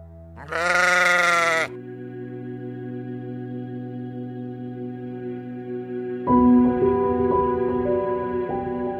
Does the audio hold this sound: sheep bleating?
yes